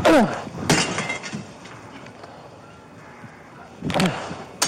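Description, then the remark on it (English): A police officer in Mesa, Arizona, throws rocks to break open an apartment window to reach two trapped children, captured on body cam: three sharp, loud crashes of glass, two close together at the start and another after a quieter gap, with children's screams mixed in around the impacts. “Body cam footage shows the police officer in Mesa, Arizona, throwing rocks to break open the window.”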